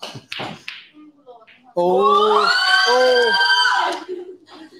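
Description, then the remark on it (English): A loud, high-pitched scream from a girl on the bendy over, holding for about two seconds with a wavering, bending pitch, preceded by a few soft taps and knocks, then cutting off into quieter background sound. “Oh, that's a bit of a high-pitched scream, isn't it?”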